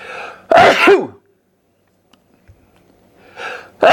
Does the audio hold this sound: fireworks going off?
no